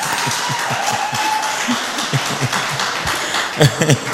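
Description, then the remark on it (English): An audience in a church claps together in a dense, steady wash of hand claps with a loosely rhythmic beat, a few sharper, louder claps popping out near the end, with faint crowd voices mixed in. “Clap for me.”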